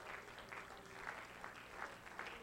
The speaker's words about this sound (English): Can you clap your hands before you're seated?